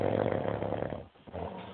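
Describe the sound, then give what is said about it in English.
A loud snoring sound effect drop rumbles in a long inhaled drone, breaks off into a brief quiet gap, then resumes with another raspy snoring breath. “Oh, Lord, we're doing the snore drops now.”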